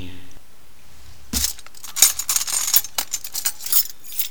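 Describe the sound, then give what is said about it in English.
Metal rattles and clinks as someone rummages through a silverware drawer for lost spaceship keys and jangles them. One thump comes first, then a busy run of bright, uneven clattering. “They were in the silverware drawer again.”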